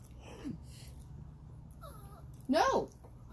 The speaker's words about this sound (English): That Chihuahua's arguing with his mom now. He heard the cake box open and he was like, I want that. He's sassing you.